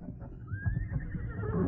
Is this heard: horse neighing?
yes